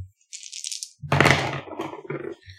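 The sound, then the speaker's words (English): Dice rattle as they're shaken in a hand, then spill out with a loud clatter onto a hard surface, tumbling and settling in a few smaller knocks. No one speaks. “I'll roll for it.”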